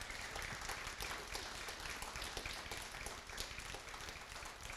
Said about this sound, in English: Just give her a round of applause or something.